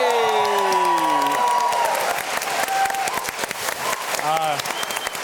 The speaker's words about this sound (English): Big round of applause